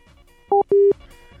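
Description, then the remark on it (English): A telephone line tone after the other party hung up on the call: two loud electronic beeps, a short two-pitched one followed by a longer steady tone, against a faint background hum with no one speaking. “It kind of sounds like they hung up.”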